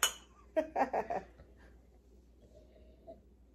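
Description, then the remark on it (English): Glasses of water clink together sharply in a toast to the new year 2023, followed by a quick burst of three or four lighter glassy knocks, then quiet with only faint background noise. “Cheers. 2023.”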